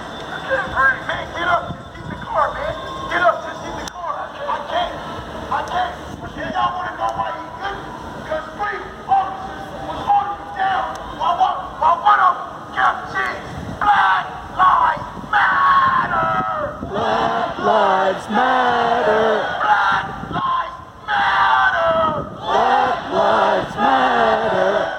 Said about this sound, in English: Next, I went to Chapman in front of the Justice Center. There were a number of protest leaders with bullhorns leading the crowd in chants. I got a couple of audio clips here. They're not very good. I took them with my cell phone.